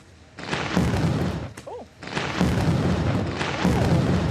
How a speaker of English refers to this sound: Nearly got hit by lightning. Next to John Aloisi, we almost got hit by lightning.